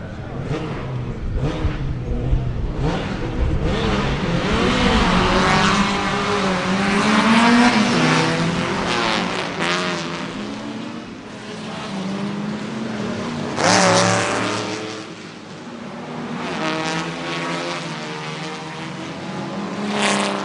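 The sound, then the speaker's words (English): A field of vintage racing cars in the Grand Prix Cars and Voiturette race roars away from the start line, with a 1936 ERA Remus on pole. Many engines rev and climb in pitch together, loud, the overlapping whine sweeping past continuously for about twenty seconds. “And that was the entire field of cars just off the start line.”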